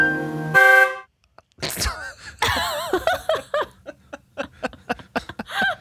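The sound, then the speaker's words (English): A loud, brassy horn honk sounds for about half a second, then a harsh noisy blast, followed after a pause by bursts of laughter. “Was that the horn honk?”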